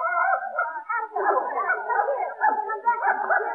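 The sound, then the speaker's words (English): A male dog whimpers and barks, a near-continuous run of high, whining yelps that keeps going for several seconds without a real pause. “Madam, you can't bring that dog in here.”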